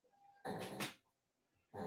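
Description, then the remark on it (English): A dog growls in a rough burst lasting about half a second, then a short pause before another harsh growl starts at the end. No one speaks. “I hear something. What's wrong? That is my dog.”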